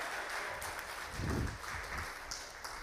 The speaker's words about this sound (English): That was kind of a golf clap from some of you.